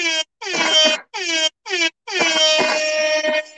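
A loud air horn sounds in four short, sharp blasts followed by one long sustained blare, the harsh brassy tone dominating, with no voices present.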